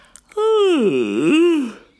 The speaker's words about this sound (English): So in a special version of the song, instead of squawking, let's try yawning together, just like this.